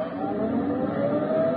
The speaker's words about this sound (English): Golly. The car's going away.